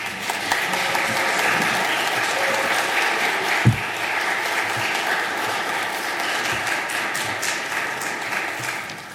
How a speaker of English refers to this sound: Dear friends, join me in welcoming with a round of applause our newest members.